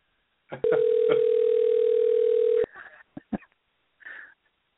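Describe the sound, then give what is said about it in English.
A phone ringing on an outgoing call after a number was typed in and dialed: one loud, steady ringback tone lasting about two seconds, followed by a few soft clicks and a brief breathy rustle. No one speaks. “It's like making a prank call.”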